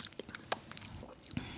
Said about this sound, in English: I think, yeah, I drank and I was like, oh, I kind of like it. I kind of, you know, it kind of grew on me. I kind of like it. I'm going to take another sip.